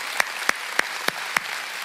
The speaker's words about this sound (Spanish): Ese aplauso, porque es para Dios. Estás aplaudiendo a Jesucristo.